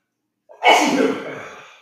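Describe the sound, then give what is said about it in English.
A single loud sneeze bursts out after a brief intake of breath, its broad hissing spray trailing off over about a second; the person sneezes from looking up into the light. “1 second, I'm gonna sneeze.”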